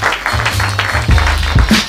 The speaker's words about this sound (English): We get a round of applause.